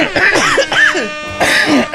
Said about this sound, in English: I was coughing down the microphone, so I apologise for that.